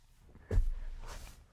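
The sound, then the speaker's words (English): A man's hand slapping the bottom of his own lifted foot: two soft, dull smacks about half a second apart, the first thumpier and the second brighter, with no talking. “You didn't see it just then, but he was laughing so hard, he lifted his foot up, reached his hand out, and started slapping it on the bottom, like that.”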